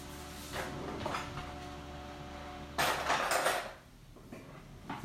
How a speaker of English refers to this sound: It's the dishwasher you can hear in the background.